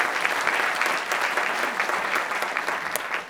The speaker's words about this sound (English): Great pitch. A round of applause for that pitch, ladies and gentlemen. Superb.